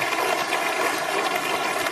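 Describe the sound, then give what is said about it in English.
An audience applauds at the end of an interview with Sam Bankman-Fried, a dense and steady wash of many hands clapping at an even, fairly loud level for the whole stretch, with no voices breaking through. “And then applause. Applause.”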